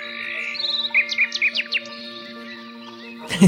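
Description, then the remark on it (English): A quick series of bright, rising bird chirps, about five in a row, sounding clear over a steady low hum, then a brief soft thump at the end. The chirps are audio feedback from a meditation app on a phone, linked to a headband, played when the user's stress drops and a meditative brain state is reached. “When I bring my stress levels down and when I reach a brain state that reflects meditation, I get an auditory feedback from my phone in the sound of chirping birds.”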